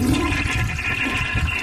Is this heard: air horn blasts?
no